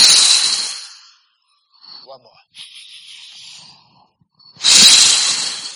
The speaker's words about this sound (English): So just for a moment, just, you know, sitting for a moment and just breathing staccato. And let it all go.